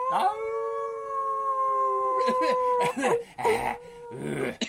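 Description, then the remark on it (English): People imitate wolves, starting with one long, steady howl, then breaking into several overlapping shorter howls and yips. The voices are loud, with no talking. “I don't have a closing theme song, so let's just howl at the moon as we go out.”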